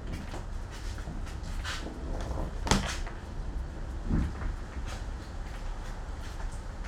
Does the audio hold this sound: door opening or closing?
yes